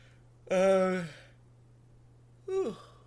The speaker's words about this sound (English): Yawning, literally yawning.